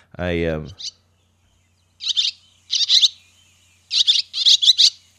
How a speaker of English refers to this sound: It's an app that has every single bird in North America on here. You can get different packs, but what I had you download was the Pacific Northwest pack. And this is a this is a barn swallow.